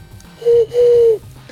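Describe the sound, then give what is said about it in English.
An owl hoots twice, a short low note followed by a longer, steady one that dips slightly at the end, clear and fairly loud over a quiet background with no talking. “Fucking owls!”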